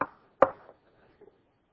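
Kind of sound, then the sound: impact, knuckles knocking on wood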